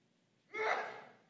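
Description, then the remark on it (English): A single sneeze bursts out abruptly after a moment of quiet, a sharp, breathy blast that trails off over about a second. No one is speaking. “Bless you.”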